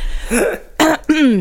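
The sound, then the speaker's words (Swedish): Three rough coughing bursts in quick succession from a person whose lungs are affected by COVID, the last one trailing into a throaty, voiced rasp, with no talking around them. “Förlåt hostan, det är coronalungan som kör loss.”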